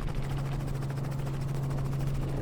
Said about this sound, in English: Yeah, there's another helicopter way over there.